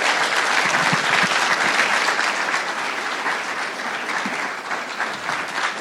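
Steady, dense applause from a church audience for six high school graduates as they come up, many hands clapping in a continuous wash that holds loud for several seconds and eases only slightly toward the end, with no voices standing out.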